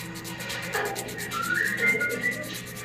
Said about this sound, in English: here in the EVP, it sounds like something falling and then rolling on the floor. It almost sounds like a bowling ball.